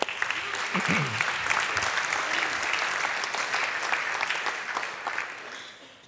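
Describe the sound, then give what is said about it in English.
An audience claps steadily in praise of Christ for several seconds, a dense, continuous patter of many hands at an even loudness that eases off near the end, with a brief voice heard at the start. “Give Him a clap.”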